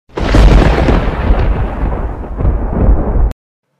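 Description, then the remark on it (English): A loud thunder crash rumbles and crackles for about three seconds with deep booming layers, then cuts off abruptly into silence. No voices are present. “Lightning crashed like cymbals.”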